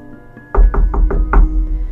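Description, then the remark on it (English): Someone raps on a door five times in quick succession, the heavy knocks landing in a fairly steady rhythm with a deep, hollow thud to each one. “It's the door again.”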